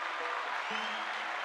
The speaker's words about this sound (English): So let's give Caleb a round of applause.